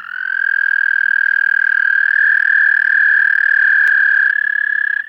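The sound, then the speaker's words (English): A frog gives a long, steady, high-pitched trill in spring, loud, holding one unbroken buzzing note for about five seconds with no voices present. “Then what frogs do we hear after that? Southern leopard frogs would be next in line.”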